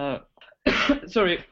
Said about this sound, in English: Sorry, I'm going to have a little coughing moment. Don't worry, we'll edit it out.